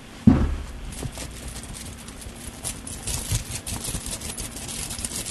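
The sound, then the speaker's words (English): A soft thump opens, followed by several seconds of light, uneven metallic jingling and rustling as coins are shaken about in a pocket for a phone-in guessing game on how many coins are in the pocket, with no talking. “It's the ultimate what's in my pocket phone-in, because it's how many coins are in my pocket. And I will jangle them for you”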